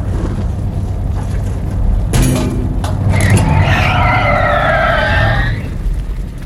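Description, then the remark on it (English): A car engine rumbles, then tires squeal loudly for a couple of seconds as the vehicle skids to a halt, with a sharp scrape just before the screech. No one speaks. “I'm gonna stop the car.”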